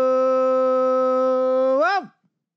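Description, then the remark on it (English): A single loud howl from a dog named Muddy holds one steady note for nearly two seconds, then swoops upward and drops off abruptly. No voices or other sounds accompany it. “My dog Muddy joined you for a second there.”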